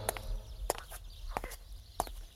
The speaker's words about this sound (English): I walked up the gravel driveway and up to the large mansion door.